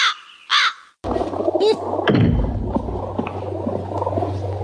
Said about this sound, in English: yes, Mom, we are scared. Super scared of these birds.